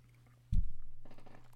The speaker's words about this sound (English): Okay, another sip. My throat is drying.